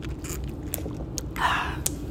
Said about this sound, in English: I noticed that there are things that I've talked about in previous segments that I'm like, okay, that's a little controversial, as I sip my tea.